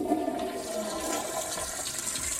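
A toilet flushes with a steady, rushing gurgle of swirling water that holds at an even loudness for the whole couple of seconds, with no voices.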